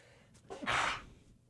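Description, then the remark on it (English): A single sneeze: a quick intake of breath followed by a loud, breathy burst lasting about a third of a second, then quiet, with no talking. “Bless you.”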